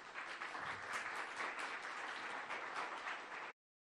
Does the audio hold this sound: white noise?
no